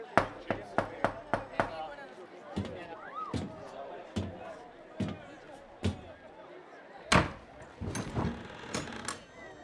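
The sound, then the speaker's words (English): Knocking on a caravan door: a quick burst of about six sharp raps, then slower, heavier knocks spaced out, ending in a final cluster of loud bangs. “It's there, in that caravan. Is he there? Should I knock?”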